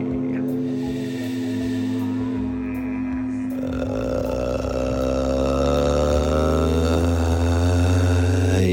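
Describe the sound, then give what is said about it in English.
A long, drawn-out burp that rumbles low and buzzy for several seconds, steady in pitch and fairly loud, swelling slightly toward the end, with no talking over it. “What a way to bring us in this evening, through the wind of your own making.”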